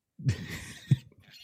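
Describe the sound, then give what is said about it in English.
A pig oinks as a sound effect in two short, throaty grunts about half a second apart, fairly loud over a steady hiss, with no talking. “That was really cool to have a pig in the stall.”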